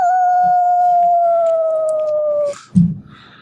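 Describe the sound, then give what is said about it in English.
A white wolf lets out one long, steady howl that slowly sinks in pitch for a couple of seconds, loud, then cuts off into a brief low rumbling burst. “It's a white wolf.”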